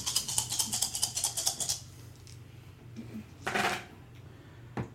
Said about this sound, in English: So do I get stunt die or anything for this? I just roll with my 9 dice. Just roll your 9 dice. Okay.